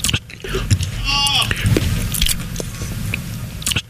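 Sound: loud open-mouth chewing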